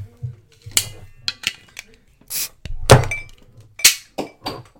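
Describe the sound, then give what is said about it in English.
A cap gun fires a string of sharp, snappy cracks at irregular intervals, with a few duller knocks and faint clatter between the bursts. “I shot it that time.”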